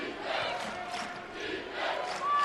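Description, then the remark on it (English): A big arena crowd at the Marriott Center roars and chants for defense during a Cougars women's basketball game, in rhythmic swells, loud and sustained, with a sharp whistle-like tone cutting through at the end. “You hear the crowd here at the Marriott Center chanting for defense.”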